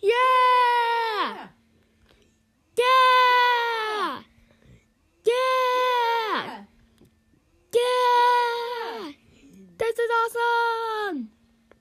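A child yells at full volume in five long, loud bursts, each strained cry roughly a second and a half, separated by brief pauses with faint background noise between them.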